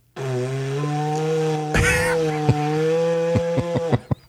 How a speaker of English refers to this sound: And he's going to attempt to play the didgeridoo.